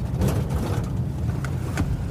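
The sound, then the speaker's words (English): A steady low rumble of a Cadillac car driving with its engine running, continuous and even throughout, with faint brief higher whooshes and no voices. “You ever been in a Cadillac? Not that I recall. Consider this a treat. They don't make cars like this anymore.”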